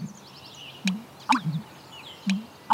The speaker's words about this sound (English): And rarer sounds like the call of the American bittern, a wetlands bird in steep decline.